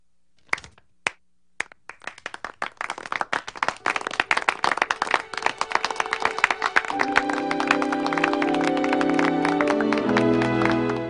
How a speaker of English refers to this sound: So everyone acknowledges that it was a good line. They all clap, well done.